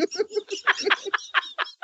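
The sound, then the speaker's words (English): A pet bird calls in a quick, choppy run of about eight bright chirps and squawks, fairly loud and uninterrupted, with no one talking. “a stinky grump in the back who doesn't talk. Yeah, Wizbird, the wizard bird.”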